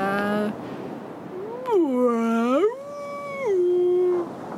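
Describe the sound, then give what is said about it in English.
A voice imitates a blue whale call: one long, moaning tone that dips low, swoops up, holds, then slides down again, lasting a few seconds with no talking over it. “That's exactly how you say my name.”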